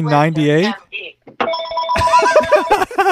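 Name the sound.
landline house phone ringing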